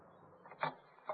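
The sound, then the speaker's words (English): A few soft knocks on the door of Frankie Fannin's office, three uneven taps with the middle one loudest, over a faint background hush and no voices. “I crossed over and knocked at the door.”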